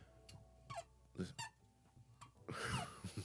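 A microphone stand creaks and squeaks in several short, pitched bursts, followed by a louder scraping, rustling stretch as it is moved, all fairly quiet.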